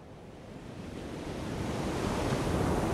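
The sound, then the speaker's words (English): Stormy winter sea waves of the Bering Sea, between Alaska and Siberia, roar continuously with gusting wind, a dense, rushing wash of surf that builds steadily louder over the few seconds, enveloping, with no voices present. “Winter in this northern sea, framed by Alaska and Siberia, is frigid, stormy, and dark.”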